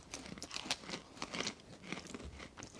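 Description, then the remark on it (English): Crisp crunching of several people biting into multicolored, cube-shaped pieces of freeze-dried ice cream at the same time, with irregular crackly bursts of chewing and no talking. “So what we'll do is we'll munch them all at the same time to get that realistic reaction.”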